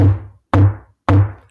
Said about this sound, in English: Hear the knock on the door.